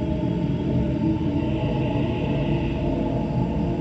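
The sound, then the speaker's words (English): A man's tormented, ghostly soul screams on as a steady, dense wailing drone, layered with low groaning tones and a faint higher cry that swells midway. No one speaks. “The man's poor soul is screaming. Do you hear it?”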